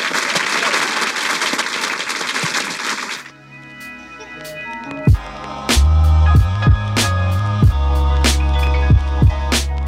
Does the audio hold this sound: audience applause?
yes